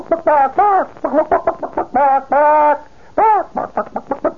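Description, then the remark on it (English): A hen in a hen yard clucks rapidly and insistently at an increased tempo, calling to a rooster, short bursts mixed with a few longer, drawn-out calls, loud with no other sounds around. “You notice the increased tempo? And this is a chicken that is, let's put it this way, is almost in the heat of passion.”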